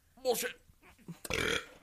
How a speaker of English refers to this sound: Hell of a burp.